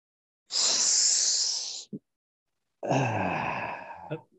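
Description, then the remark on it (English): Two long, wet sniffs, each a harsh breathy rush of air through a stuffy, runny nose, the second rougher and more snorting, with a brief catch between them. “Are you taking any medicine for that sniff?”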